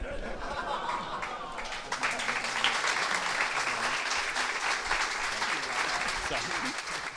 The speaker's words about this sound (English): Please give an extra round of applause for our readers.